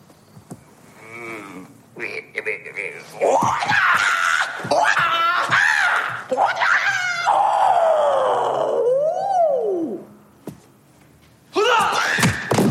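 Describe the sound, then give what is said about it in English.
A loud, drawn-out battle cry rises and swoops in pitch, preceded by sharp grunting shouts and thuds, then a brief pause before another burst of yelling at the end. “Give them a little move, a little scream, and lots of attitude.”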